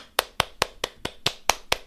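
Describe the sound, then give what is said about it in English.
One person claps for themselves, seven sharp, crisp hand claps in a steady, fairly quick rhythm, each a bright slap with no voices over it. “I'm clapping for myself.”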